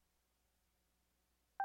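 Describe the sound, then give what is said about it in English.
Near silence, then a single loud electronic phone dialing tone starts abruptly right at the end, a sharp two-pitched beep with no voices. “Calling Anthony's Pizza 2S Mobile.”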